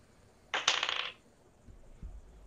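A quick burst of hard clattering, like small dice tumbling and rattling across a table for about half a second, fairly close and clear, followed by quiet with a faint low thump.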